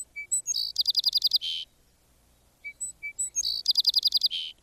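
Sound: song sparrow song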